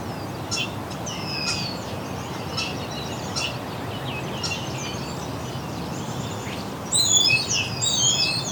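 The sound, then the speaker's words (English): Northern parula song, a rapid run of high, buzzy notes rising near the end, over a steady hiss of background noise with a few scattered chirps earlier on. “Several thrush here too. Northern Perula.”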